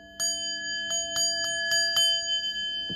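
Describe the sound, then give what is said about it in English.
A bright, ringing bell sounds several times in quick succession, its clear tones sustaining steadily underneath, fairly loud with no one talking. “Did y'all hear the bell?”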